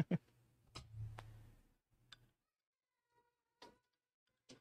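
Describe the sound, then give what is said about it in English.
A door is pushed shut with a dull thud and a latch click, followed by a few scattered sharp ticks and knocks over a quiet low hum. “I'm gonna shut that door.”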